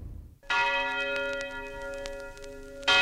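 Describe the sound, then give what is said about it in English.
A large bell tolls at 9 o'clock, signalling that black people must leave the white city, with a deep, resonant strike that rings out and sustains, then a second strike begins at the end; loud, with no voices. “At 9 o'clock, a big bell would ring, dong, dong, and you knew that was for you, if you were black, to get out of the white city.”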